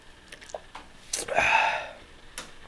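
A short slurping sip from a can of seltzer: a brief airy intake followed by a wet, fizzy gulp, then a faint click afterward. No one speaks.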